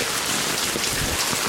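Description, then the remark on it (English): Floodwater rushes steadily like a river through a neighbor's yard, a dense, even hiss with a pattering, rain-like texture that holds at a constant loudness throughout, with no voices. “Look at that water flowing. It's a freaking river running right through here.”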